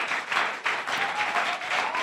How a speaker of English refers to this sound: It's a good place to clap.